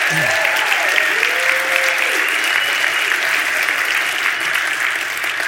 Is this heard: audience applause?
yes